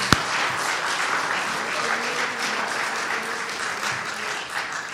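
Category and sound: crowd, audience applause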